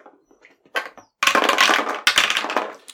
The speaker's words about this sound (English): Let's roll dice.